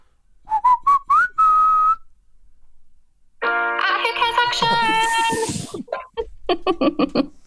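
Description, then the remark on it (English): A person whistles a short jingle of a few quick notes stepping upward, ending on a held tone. After a pause, louder, richer tonal sounds follow, then choppy bursts. “Like, so I'll do the whistle and you play it afterwards, and it'll sound.”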